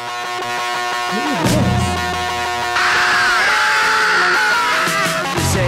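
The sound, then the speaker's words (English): A high, wavering scream rises over loud, dense rock music, growing stronger partway through and holding with a shaky pitch before it peters out at the end. “Is that a good scream?”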